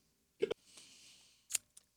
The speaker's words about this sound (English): And I have the hiccups.